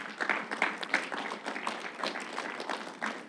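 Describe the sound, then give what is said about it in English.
A church audience at Highlight Church in Gaithersburg applauds steadily for a few seconds, a dense patter of many hands clapping together, fairly soft, with no voices rising above it. “And what I will, let's clap it up.”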